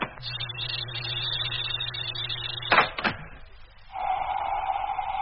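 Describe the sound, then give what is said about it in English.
A mechanical airlock door on a truck hums and whines, gives two heavy clunks as it moves, then settles into a different steady electronic drone. No one speaks. “Well, then we'd better let ourselves in. Open the airlock.”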